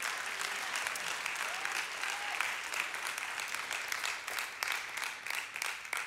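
An audience claps steadily, a dense, continuous patter of many hands at moderate loudness, with a few faint voices rising briefly in the mix.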